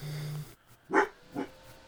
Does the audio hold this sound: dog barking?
yes